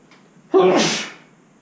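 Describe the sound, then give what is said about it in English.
A single loud sneeze bursts out sharply, a brief voiced onset swelling into a breathy hiss that trails off over about a second, with quiet before it. “I'm going to sneeze.”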